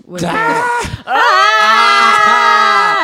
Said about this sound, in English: Hey! Let's all just yell.